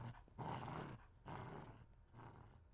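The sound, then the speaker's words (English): A female pit bull growls at the remains of a gourd in three deep, rasping bursts separated by short pauses, fairly loud, with no other sounds around it. “They all fled, except for the pit bull, who turned at what was left of the gourd and growled.”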